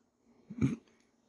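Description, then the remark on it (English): A single small, low burp, short and fairly soft, rising briefly out of near silence and fading within a fraction of a second; no talking. “Sorry about that. Little burp.”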